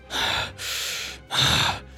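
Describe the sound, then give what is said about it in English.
A voice imitates the harsh, ragged breathing of a wounded bugbear: three loud, raspy breaths, alternating in and out with brief gaps, with no other talk. “And you hear this nasty, ragged breathing.”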